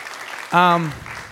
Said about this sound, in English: Give God a round of applause for just a second real quick.